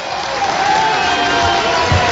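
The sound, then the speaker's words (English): A large basketball crowd rises to its feet and applauds and cheers steadily as Snyder makes a full changeover with the score at 67-55, a dense, continuous roar of clapping and voices that stays at an even, fairly loud level throughout. “As it's a whole changeover for Snyder as the crowd comes to their feet.”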